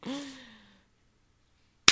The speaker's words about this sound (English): Nailed it. That was a great clap. Thank you.